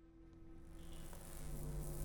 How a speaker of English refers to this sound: I awake to the sound of buzzing fluorescent lights. Or is that a drill? The noise swirls in my head as my surroundings begin taking shape.